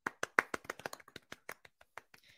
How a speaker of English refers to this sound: And you could give me, just do like applause after each name. That would be great. We'll give them a little clap each name, okay?